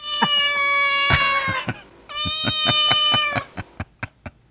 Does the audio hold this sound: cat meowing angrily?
yes